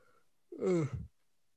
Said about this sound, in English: Excuse the yawn.